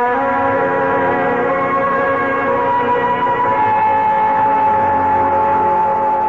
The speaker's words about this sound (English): A police car is driving up.